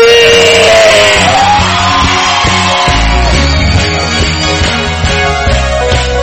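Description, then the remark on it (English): A large crowd screams and shouts loudly and continuously, a sustained roar of many voices, with live music and a steady pounding drumbeat driving underneath. “scream”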